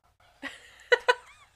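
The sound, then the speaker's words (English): A dog gives a thin, whiny whimper, then two quick, sharp huffing breaths in a row, trailing off into a faint high whine. No one speaks. “I don't know if the microphones are picking up my dog's I very dramatic down the breathing.”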